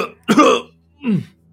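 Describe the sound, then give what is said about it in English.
Two harsh, rasping coughs, the first loud and broad, the second shorter and throatier after a brief pause, from an unwell guard atop a gatehouse hacking through a coughing fit. “And you can tell from his coughing fit, this man is unwell.”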